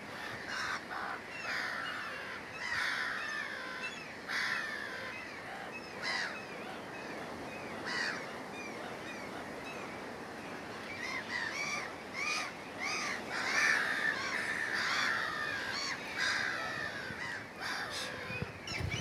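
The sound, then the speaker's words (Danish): Four hooded crows caw repeatedly in harsh, raspy bursts, several calls overlapping at irregular intervals over a steady low background rumble, with no talking. “For eksempel, her har vi fire kraver. Kraver er der også nogle af.”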